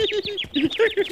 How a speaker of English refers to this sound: Oh, look, a bird!